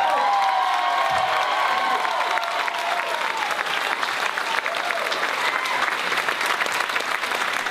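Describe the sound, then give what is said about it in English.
Steady, dense applause from a large audience at the end of a stand-up comedy set fills the whole stretch, with some cheering and a few shouted whoops rising over the clapping, loud and sustained throughout. “I felt the applause.”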